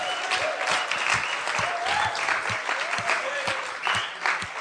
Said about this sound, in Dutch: Zij zijn afgelopen donderdag verloofd. Dus laten we ze een groot applaus geven.